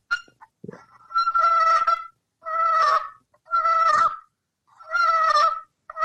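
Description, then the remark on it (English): A low, slow purr worked on a turkey call: four raspy, broken-up rolling bursts separated by short pauses, steady and fairly low in pitch, with no one talking. “That's a kind of a terrible example of a purr. Because it's kind of like a broken up little dill, right?”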